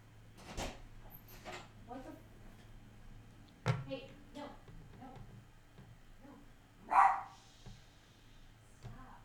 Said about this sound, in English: Oh, gosh. I think he's barking at the cat. Oh, I was like, I think he's upset about this, too. He is mad about a cat.